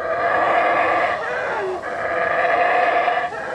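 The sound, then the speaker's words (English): Black howler monkeys in the forest roar and howl in a loud, continuous chorus of rough, droning calls, with brief dips in the sound before the roaring surges back. “They're black howler monkeys.”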